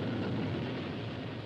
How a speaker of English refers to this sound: The roar of a rocket.